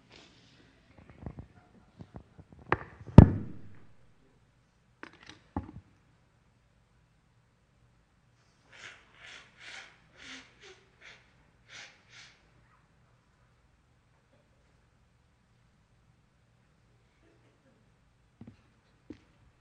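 Someone blows their nose: a loud, forceful honk, a couple of shorter blasts, then a run of softer rhythmic sniffs and puffs before near silence. No one speaks.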